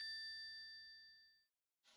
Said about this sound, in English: Whose phone is that?